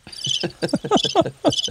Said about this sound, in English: Crickets. Nobody clicked on that.